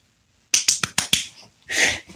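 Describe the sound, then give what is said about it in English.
A secret knock rhythm on a door: five crisp, sharp raps in a quick, even sequence, followed by a brief rushing burst and one last faint tap. No one speaks. “I have to put the secret knock, so I have to put it down and...”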